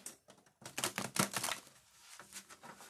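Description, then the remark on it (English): A deck of cards being shuffled, a quick burst of dense riffling clicks and flutters that swells in the middle, then trails into softer rustling. “Let's see, we're going to give these a little shuffle here.”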